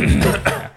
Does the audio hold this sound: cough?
yes